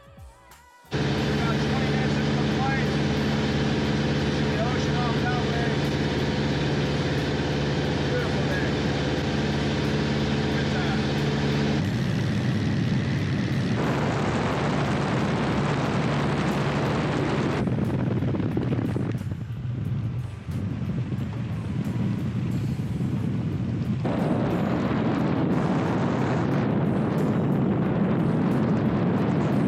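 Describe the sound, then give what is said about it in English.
A small propeller plane's engine drones loud with a steady buzzing hum in flight on the way to Mammoth, then abruptly cuts out as the engine fails and the propeller stops turning, leaving only rushing wind noise that rises and falls. “the engine goes out, and it's very obvious that the engine goes out.”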